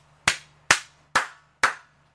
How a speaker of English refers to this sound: I am clapping, sir. That was fantastic.